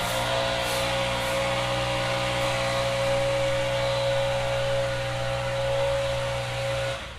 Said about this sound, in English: Why can't they put a muffler or something like that on these leaf blowers? That is the question of the day.